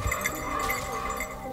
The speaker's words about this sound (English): There's a honey-colored dog running past me with a bell on its collar, bringing the sounds of a Christmas that's only a few days away into these unseasonably warm backcountry woods.